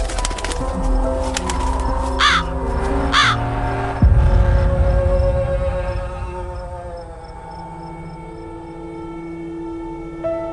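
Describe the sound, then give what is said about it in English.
A crow gives two harsh, rasping caws as it lands on a man's outstretched arm by an old wooden fence bordering dried, dead corn, heard over a low, steady rumbling drone that keeps going and fades somewhat after the calls, with no one speaking. “The villain spreads his arms and a crow lands on his outstretched arm.”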